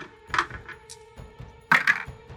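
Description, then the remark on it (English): Dice clatter across a hard tabletop in two short bursts of sharp clicks, a brief rattle near the start and a louder tumble later, over a faint steady hum. The dice are rolled for a smite attack. “I'll take my little smitey dice.”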